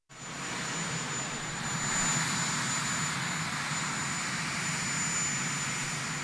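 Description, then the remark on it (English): The engine of Marine One, the helicopter Joe Biden is walking onto, runs with a loud, steady turbine roar and broad hiss that holds constant for several seconds, with no voices over it. “Here is the clip of Joe Biden walking onto the helicopter, Marine One.”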